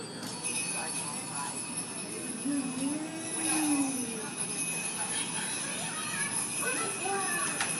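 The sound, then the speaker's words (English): A steady, droning hum from a little balcony above New Orleans Square in a theme park runs beneath a busy outdoor crowd, with people chattering and children's voices throughout, and a brief rising and falling tone surfacing in the middle. “When you're in New Orleans Square and you have to take a potty break, as so many of us do, there's a little balcony up above, and lots of the time you'll hear humming from up there.”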